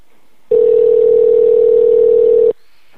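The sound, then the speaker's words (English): A single steady phone ringback tone sounds for about two seconds as a man who got cut off is called back, loud and clear against near silence, then cuts off abruptly. No voices are heard. “Let me call him back.”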